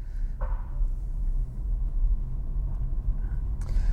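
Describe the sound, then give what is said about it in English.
A steady low rumble inside a car without air conditioning, windows partly open, as the vehicle pulls away, with a brief clatter near the start and a faint higher rattle toward the end, no one speaking. “So we're off. Now, I don't have air conditioning in this car, so I gotta have a little bit of windows open so that I get some airflow through here.”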